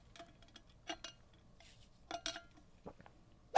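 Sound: sipping water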